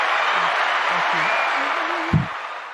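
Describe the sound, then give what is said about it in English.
A steady wash of audience clapping and crowd noise, with low voices murmuring underneath and one sharper hit near the end. “you're the only one clapping.”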